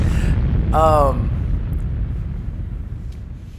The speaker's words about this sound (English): Explosion. I feel like that was coming with that.